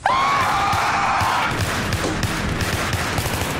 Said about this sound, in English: One of the more common vocalizations is often described as a high-pitched scream like a woman being murdered in the woods. Sometimes they're long and drawn out. Sometimes they're short, like this.